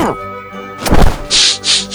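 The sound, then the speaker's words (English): A single heavy boxing punch in a midweight boxing match knocks the opponent out cold, landing with a sharp, booming thud, preceded by a low sustained tone and followed by two breathy, hissing bursts. “You knocked Snidely out cold.”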